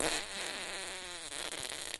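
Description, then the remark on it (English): A single long, buzzy fart sound effect meant as a man farting while watching TV, loud, wavering in pitch for about two seconds with a thin, reedy tone rather than a deep one, heard alone with no talking. “Just guy farts while watching TV.”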